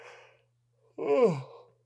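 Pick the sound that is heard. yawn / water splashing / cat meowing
yawn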